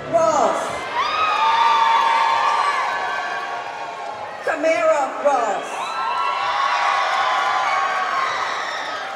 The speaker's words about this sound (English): When audience members were told to please hold your applause, they yelled louder.